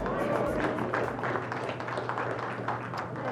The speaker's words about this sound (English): In a little while in the sermon, you'll see how meaningful that applause is to me.